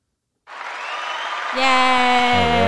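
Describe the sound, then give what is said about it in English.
A canned crowd cheer sound effect, triggered by a cheer button, bursts in after a beat of silence, a wash of clapping and roaring that swells louder halfway through as shrill, sustained voices and whoops rise above the noise. “We got to hit the cheer button.”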